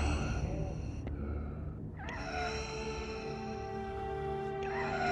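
Darth Vader's labored mechanical respirator breathing through his mask after he is wounded: slow, strained breaths with a raspy hiss and a steady tonal hum, each breath shifting in pitch, with no talking.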